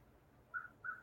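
Two short, tonal bird chirps sound in quick succession in the background over a quiet outdoor setting, picked up by a microphone, soft, with no talking.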